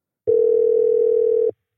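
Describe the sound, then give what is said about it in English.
A telephone call to the writer Buzz, author of Friday Night Lights, rings out as a single steady, mid-pitched electronic tone lasting just over a second, loud and even, with no voices and silence on either side. “Let's give him a call.”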